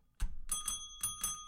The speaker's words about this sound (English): I'm sorry to ring the bell.